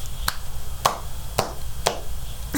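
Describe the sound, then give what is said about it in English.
Five sharp hand claps in a slow, fairly steady rhythm, each a crisp, bright smack, set against a low background hum with no one talking. “Thank you for the clap.”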